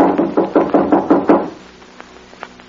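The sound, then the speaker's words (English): A series of about eight firm, evenly spaced knocks on a wooden hotel room door, loud, followed by quiet with a couple of faint clicks. “I'll try knocking.”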